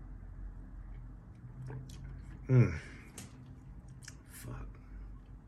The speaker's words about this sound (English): I'm sipping on orange juice, and I don't think I shook the bottle. I shake the bottle? Damn.